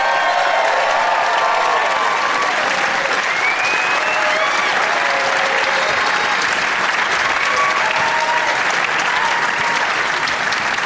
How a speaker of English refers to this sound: Thank you. We nailed that intro. That was for me. That applause was just for me.